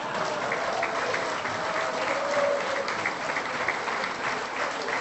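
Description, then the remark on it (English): A sound effect of a chorus of applause from a large crowd, steady and fairly loud, with dense overlapping clapping that holds an even level the whole way through and no voices on top. “As we record this, today is the birthday of James Doyle, our fantastic producer, who will probably right about now throw in a sound effect of a chorus of applause.”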